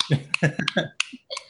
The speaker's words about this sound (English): Wow. I'm clapping.